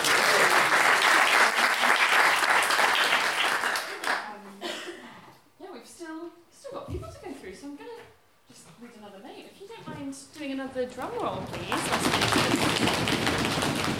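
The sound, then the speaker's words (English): A crowd at a storytelling event bursts into loud, sustained applause, fading as a voice speaks over a quieter stretch in the middle, then the clapping swells strongly again at the end. “Thank you so much, round of applause!”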